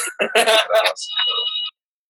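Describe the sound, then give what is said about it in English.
A landline house phone rings in one short, loud trilling burst, its electronic bell warbling for under two seconds before cutting off abruptly into silence. “You got a house phone? Yeah, somebody's trying to.”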